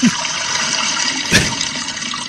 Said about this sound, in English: That was a 2 gallon flush. You would think in New Mexico they wouldn't have a 2 gallon flush, seeing how they have droughts every now and then. It's a 5 gallon flush.